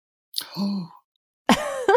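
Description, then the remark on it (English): A breathy gasp from a single person reacting to being asked to choose between Paddington Bear and Winnie the Pooh, followed a moment later by a short voiced exclamation, with no other sounds around it. “Love that gasp.”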